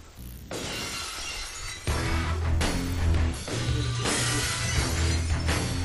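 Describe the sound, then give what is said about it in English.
A loud glass-shattering crash opens Stone Cold's wrestling entrance theme, followed by driving music with heavy repeated bass hits and bright, noisy upper layers, with no voices. “What if you hear Stone Cold come out?”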